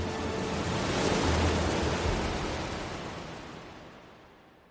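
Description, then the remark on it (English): A broad, hissing wash of Arabian Sea surf swells to a peak against rocks and then slowly recedes, like a single wave breaking and drawing back, with no voices. “Her body dashed into the rocks. Bruised and battered, she rolled into the waves of the Arabian Sea.”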